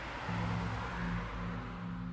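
A Ford Tempo car engine rumbles to life and holds a low, steady drone for a couple of seconds, moderately loud, with no voices, as the driver starts it and hits the gas to speed away from a motel.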